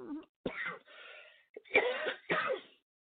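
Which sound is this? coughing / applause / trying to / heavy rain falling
coughing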